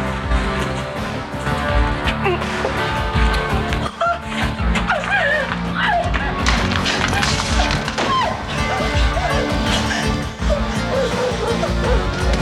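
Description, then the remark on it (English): A heavy thud of a woman's body thrown onto the ground by a man, one dull impact amid a loud, chaotic jumble of scuffling, knocks and high squealing cries, with muffled voices underneath. “That thud you heard was her getting thrown onto the ground.”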